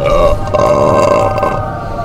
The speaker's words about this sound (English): Number 2, was that a belch?